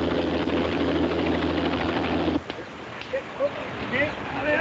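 An air ambulance helicopter, its pilot trying to land on a logging bridge: a steady, droning engine and rotor hum fills the first half, with deep layered tones, then cuts off abruptly, leaving a quieter backdrop with a few brief high chirps.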